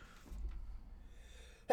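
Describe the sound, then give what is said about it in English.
A single sudden sneeze bursts out near the end, loud and sharp after a stretch of quiet, low background rumble, with no talking. “Bless you.”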